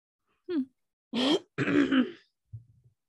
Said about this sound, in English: Well, you're coughing and I'm falling apart with allergies.